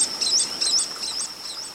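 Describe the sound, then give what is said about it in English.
White-collared swifts, flying up to 100 miles per hour through a waterfall into a cave, hundreds passing within a minute or two, call in a rapid series of shrill, high-pitched chirps, about half a dozen bursts over a thin steady hiss, with no voices. “Their wings whoosh as they rush by. Flying up to 100 miles per hour, they slice right through the waterfall into the cave beyond.”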